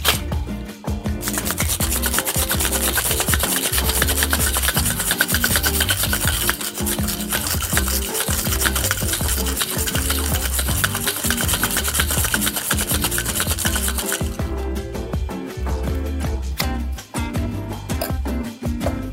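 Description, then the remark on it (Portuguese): A cocktail shaker is worked hard with ice to make a non-alcoholic drink, shaken vigorously to create plenty of liquid: a loud, steady, rhythmic rattling and scraping that runs for nearly twenty seconds without pause; no one speaks. “Vamos bater vigorosamente bem para criar bastante líquido.”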